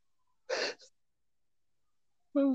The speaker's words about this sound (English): Sorry, I keep yawning.